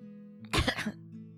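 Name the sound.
cough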